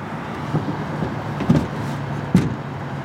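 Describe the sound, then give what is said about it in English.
A weak-looking man climbs into the back seat of a car: a few soft thumps and clunks of a door and seat over a steady low engine idle and interior rumble, with no voices. “No, he's getting in the car.”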